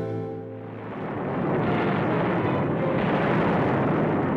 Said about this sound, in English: tragedy strikes June 5th, 1942 at 2:45 a.m. There was a huge explosion. Ba-boom. Boom!